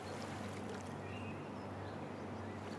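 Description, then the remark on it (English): Soft, continuous watery wash with low rumbling texture as lake water slowly laps at the shore, steady and unhurried with no voices, plus a faint high tone drifting in the background. “You hear the water in the lake slowly coming to shore.”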